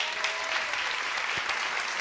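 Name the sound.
loud audience applause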